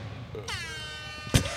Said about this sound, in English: It's not a game until there's a fucking air horn. We could use a little more of that kind of thing.